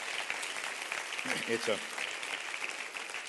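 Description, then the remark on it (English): A church audience claps steadily throughout, a dense, even wash of many hands, with a brief voice calling out over the applause midway, giving a departing church member a farewell hand clap of love. “And so we want to give her a great hand clap of love right now and tell her how happy we are to have her a part of our church.”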